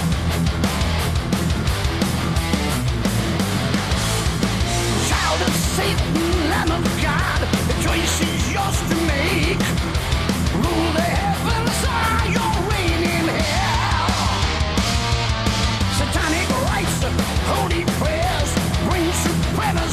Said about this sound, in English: The scream at the beginning of this song is absolutely insane.